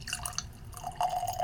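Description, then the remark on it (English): Whiskey, a 5-year-old, 100-proof malted rye, glugs and trickles into a glass in a short wet pour with a rising tone as the glass fills. It is fairly quiet, with no one talking. “All right, got that one poured.”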